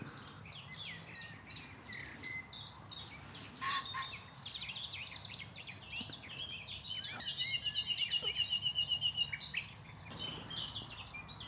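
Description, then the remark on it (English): A nightingale sings from deep in dense undergrowth, its varied phrases and a rapid repeated note mixed into a busy chorus of other songbirds, including garden warblers, with a low hum of building traffic underneath. “There is one trying to sing his way through, buried deep in the undergrowth. Nightingales are lovers of dense cover.”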